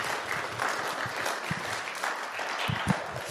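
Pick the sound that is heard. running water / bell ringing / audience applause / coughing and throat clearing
audience applause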